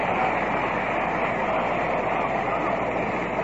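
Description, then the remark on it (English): A large baseball stadium crowd cheers as Gil Hodges comes up to bat, a loud, steady roar that holds constant for a few seconds, a dense wash of many voices with no single speaker standing out. “And listen to the crowd as Gil Hodges comes up.”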